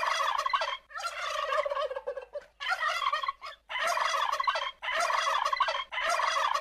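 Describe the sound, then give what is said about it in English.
Several turkeys gobble loudly in a series of rapid, warbling bursts separated by brief pauses, with no voices or other sounds around them. “The turkeys were chunky with smiley beaked faces, and they greeted the children with downy embraces.”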